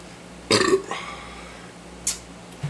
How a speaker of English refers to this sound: And for me, the burp's not as bad whenever I just take this out and do it normal.